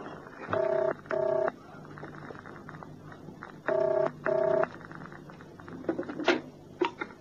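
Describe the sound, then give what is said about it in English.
A telephone ringing tone heard down the line while calling a flat, in two paired bursts with a pause between, followed by a few clicks and clunks as the receiver is picked up at the far end. “Who are you ringing? My flat.”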